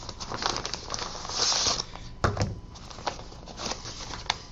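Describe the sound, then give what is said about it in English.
Steady crinkling and rustling of a padded paper mailer being opened, with a sharp tearing snap partway through and softer paper handling after; no one speaks. “Ooh, I hope this isn't one of those jobs that leaks that fuzzy white crap everywhere.”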